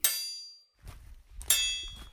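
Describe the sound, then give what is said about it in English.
A heavy door slams shut with a loud metallic clang that rings out, followed by a low rumbling shuffle and a second ringing clang about a second and a half later. “Bloody door. Still hear you.”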